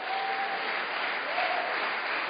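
An audience claps their hands in steady, dense applause, a continuous wash of many overlapping claps that holds at an even loudness throughout.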